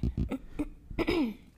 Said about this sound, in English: No, it's just a cough because of the coke.